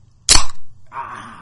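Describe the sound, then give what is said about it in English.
A loud crash of breaking glass: one sharp, bright burst, then a shimmering rattle of shards that trails off over about a second. No one speaks. “It was like we were a piece of glass to break.”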